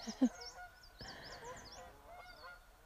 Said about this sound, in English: And then if there's a time when you really feel like, wow, who's that? What is that beautiful scent, sound? Those geese.